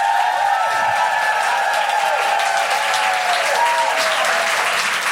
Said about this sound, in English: Can I have a huge round of applause for the incredible Sindhu Vee?